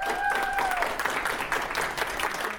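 A Lancaster University audience at a Northern Power Women event applauds the speakers steadily, dense overlapping clapping filling the whole stretch at an even, fairly loud level, with a brief high whistle near the start.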